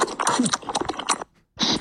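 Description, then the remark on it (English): Loud, wet slurping and smacking of someone eating ramen, recorded by a 360 camera placed in the bottom of the ramen bowl, a dense run of noisy bursts that stops briefly before one more slurp. “People putting the 360 camera in the bottom of the ramen. Listen to that.”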